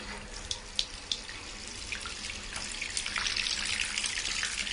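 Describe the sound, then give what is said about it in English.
A tap gushes steadily into a bathtub being filled to test Mr. Matey bubble bath, a broad hiss of running water with a few splashy clicks early on, growing fuller and louder toward the end. No one speaks. “while the bath's running, why don't you pour some out into the lid and let me know what it looks like?”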